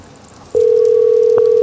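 The ringing tone of an outgoing phone call, redialing someone who lost service, starts abruptly after a short quiet moment, then holds as a loud, steady electronic hum with a faint click partway through. No one speaks.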